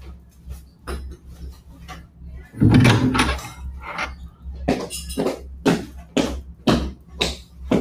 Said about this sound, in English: My mother was upstairs, and I was laying at the breakfast table when the parlor door opened and a stranger stepped in.